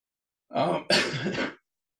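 A person clears their throat and coughs, two quick rough bursts back to back lasting about a second, with silence on either side.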